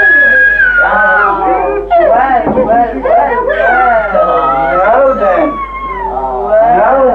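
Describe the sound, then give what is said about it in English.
A baby boy wails and screams continuously in high, wavering cries, heard through a hissy, band-limited old tape recording with a steady low hum underneath. “he's not going to be screaming like a baby in 1969, 1970. There he is.”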